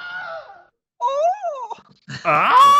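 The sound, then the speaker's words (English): A Wilhelm scream sound effect: three strained, wavering male cries with bending pitch, separated by short gaps, the last one loudest and raspiest. No talking. “I was watching like a compilation of the Wilhelm scream the other day, and I just couldn't stop laughing at how like ludicrous the scream is.”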